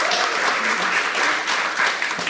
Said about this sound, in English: Yeah, round of applause.